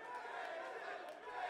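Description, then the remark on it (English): A steady wash of crowd noise from a live audience, a dense roar of overlapping voices cheering at a fairly even level with no clear peaks. “I don't even know what they're cheering for. I think that was a Gerald Everett cheer.”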